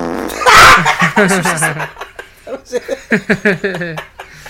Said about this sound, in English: Get it? It's funny because he fucking farted, dude. It's funny because he farted.